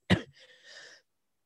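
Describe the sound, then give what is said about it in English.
A single sharp cough bursts out, followed by a raspy, wheezing breath trailing off for nearly a second before silence. “I'm sweating. I'm coughing.”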